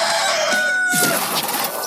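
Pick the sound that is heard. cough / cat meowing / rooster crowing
rooster crowing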